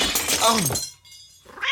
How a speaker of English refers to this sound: Can you get the cat? You got a cat here! I think it got in when they opened the door.